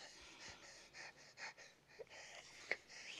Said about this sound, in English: I know. Great audio. Yeah. Just heavily breathing.